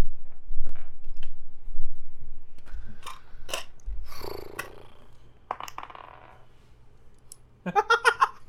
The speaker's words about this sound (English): I'm gonna roll another 2. Where's my other dice?